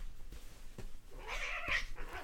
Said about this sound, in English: Guys, stop it. The cats ain't having it. I'm going to take y'all to the pound. Not really.